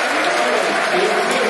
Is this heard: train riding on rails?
no